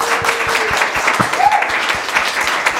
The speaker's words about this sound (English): Thank you all so much. I think we can all agree that there was a ton of information presented today. I'd like to ask you to give a round of applause for our panelists, please.